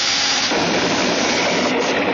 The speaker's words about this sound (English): Great galaxy, what was that? Sir, that explosion came from below.